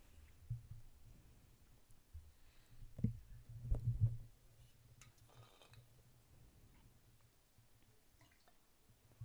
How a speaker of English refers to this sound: I'm going to pour him an extra drink. Let's pour mine too when you're done.